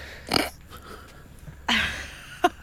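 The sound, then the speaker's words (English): A male BBC News newsreader, on air, stifles a sneeze: a breathy, snorting burst, then a longer, louder sneeze, followed by a short sharp sniff or snort, with no speech around them. “He felt a sneeze coming on, this newsreader,”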